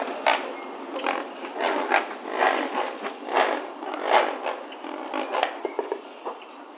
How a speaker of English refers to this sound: Here's a great blue heron in Sonora, Mexico, calling in flight. This next bird is also flying.